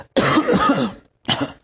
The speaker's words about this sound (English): We will say "you're sick" if you have a malady. You are coughing.